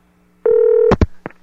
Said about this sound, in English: Let's try this phone call again, this number that KBC gave me. It's ringing.